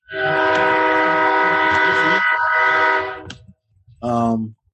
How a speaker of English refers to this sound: Nigga got trains going past him and shit.